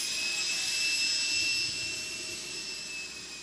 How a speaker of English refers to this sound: listening to that, the whirling of the jet. Listen to that. Oh. It's an orgasmic experience, I'm telling you. Listen to it. It's taxiing right now. You can hear it, and I'm looking at this plane. It's being guided. Just listen to that.